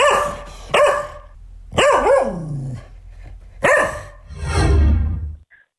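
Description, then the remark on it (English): A dog barks in a series of four sharp, loud barks spaced irregularly, ending with a longer, rougher growling bark. No one speaks. “I mean, geez, if we've had time to go and record dogs, we can clean up the song.”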